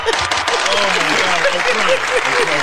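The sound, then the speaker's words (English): A live audience applauds and cheers loudly and steadily, dense clapping filling the whole stretch with shouting voices rising through it, no pause or fade. “Make some noise.”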